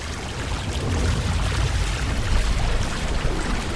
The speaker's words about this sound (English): That water's rising fast.